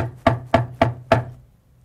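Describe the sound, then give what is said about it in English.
Four sharp knocks on a door in a steady, even rhythm, each a solid rap with a quick decay, followed by silence. A low hum sits underneath, and no one speaks. “There's a knocking on the door.”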